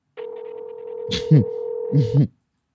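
A phone line rings out with a steady electronic ringback tone lasting about two seconds, while a couple of short vocal bursts cut in over it.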